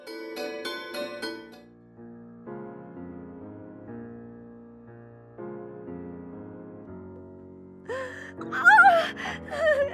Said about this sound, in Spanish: A partir de ese momento, empecé a tener pesadillas horribles. Me despertaba gritando y llorando.